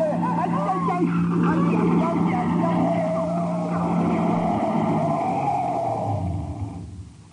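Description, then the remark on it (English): A car engine races at high revs in a radio drama chase, The Man Called X, as a car heads for the border of the Russian zone: a loud, steady roaring drone with a rising whine, then it fades away in the final second. “I'm going to try and stop that car before he reaches the border.”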